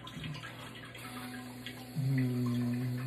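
Steady spray of warm water with a droning motor hum underneath; about two-thirds of the way in, the hum jumps higher and louder, like a bidet starting its wash. No talking.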